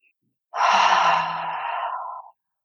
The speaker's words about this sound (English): And just take 3 deep breaths. So we're going to breathe into the belly and expand and open through the chest. And take a deep exhale as you breathe out.